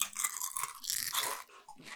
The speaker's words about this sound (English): First one is kettle cooked uglies. Potato chips, buffalo ranch. All right. Well, I'm excited about that. Let's try these. Cheers. Is there ASMR for chip crunching?